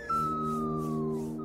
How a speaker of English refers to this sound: Zuko just straight up takes the spear, snaps it in half, pokes him right in the face. We get perhaps the smartest Foley choice of all. We get a slide whistle, and it's the slide whistle of spear dismemberment.